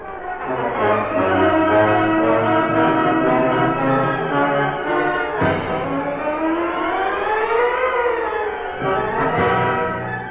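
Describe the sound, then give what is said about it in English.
Sirens of approaching police cars wail loudly and steadily, their pitch sweeping slowly up and down over several overlapping tones, with no voices heard. “Here come police cars.”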